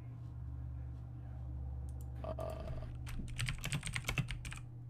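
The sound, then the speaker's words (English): Rapid, uneven clicks of typing a website name on a computer keyboard, building into a dense burst of keystrokes over a low steady hum, with faint voices murmuring in the background. “I am already typing it in.”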